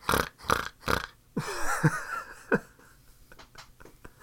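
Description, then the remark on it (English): A woman's voice imitates a pig, like the pig in the film A Christmas Story. She lets out three quick, harsh snorts in a row, then a squealing, gurgling grunt and a final short snort, trailing into faint breathy noises. “a grown-ass woman snorting like a pig, like from Christmas Story.”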